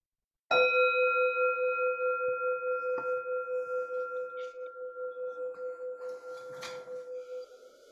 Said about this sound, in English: And I'll ring a bell at the end of the period for sitting here.